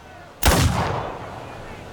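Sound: two gunshots fired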